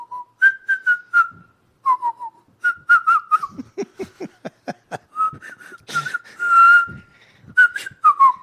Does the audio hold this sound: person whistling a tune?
yes